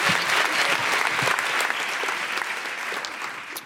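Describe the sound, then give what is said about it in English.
A crowd applauds steadily, a dense wash of many hands clapping at a loud, even level that eases off slightly toward the end, with no voices over it. “Big round of applause”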